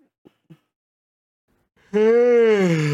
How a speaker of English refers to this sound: We're yawning. I'm not tired. We're yawning.